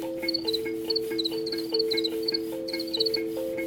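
Crickets chirp in quick, repeated high-pitched bursts over a steady, low droning chorus, a continuous outdoor night-time sound with no one talking.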